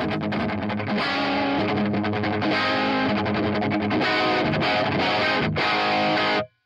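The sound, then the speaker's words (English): Loud, crunchy distorted electric guitar playing rock chords and riffs through a Marshall amp, sustained and driving for several seconds before cutting off abruptly; no voices. “Marshalls don't really sound great for chugging, but they sound amazing for rock and roll.”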